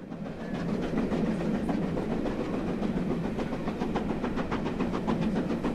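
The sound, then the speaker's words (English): A fully serviced steam train on its return journey to London, heading for Waterloo, runs steadily along the rails, its wheels clicking in a quick regular rhythm over a continuous low rumble and chuff, fairly loud, with no voices. “And so, fully serviced, the train started its return journey to London.”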